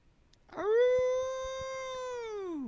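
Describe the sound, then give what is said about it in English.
A person imitates a wolf howl: a single long, steady, fairly loud vocal wail lasting about two seconds, rising quickly at the start and dropping off at the end. “Just my wolf cry”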